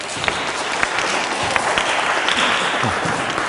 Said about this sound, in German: Und was ihr da hört, das sind die Leute, die klatschen, weil die Sommerpause vorbei ist.